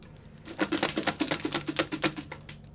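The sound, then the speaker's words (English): Rapid, light rustling and papery tapping as slips of paper are shuffled inside a small plastic yogurt pot, a quick run of soft clicks lasting a couple of seconds. “I've just picked up a yogurt pot. In here are some pieces of paper. Yep. I'm just shuffling them.”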